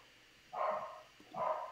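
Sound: dog barking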